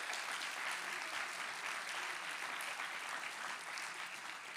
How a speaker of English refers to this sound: And give Ben a big old clap tonight.